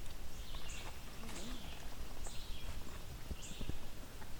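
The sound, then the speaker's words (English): A pine warbler sings faint, high trills, repeating several times over steady outdoor background noise with scattered footsteps and rustling. “There's a pine warbler up in here.”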